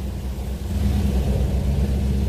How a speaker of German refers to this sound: Da haben sie den Drohnensound unterlegt und die Grafiken zu den Drohnen. Einfach um zu zeigen, okay, wir haben richtige Drohnen.